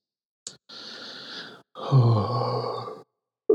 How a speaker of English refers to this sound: I'm sorry, I'm yawning in your ear. This coffee ain't working.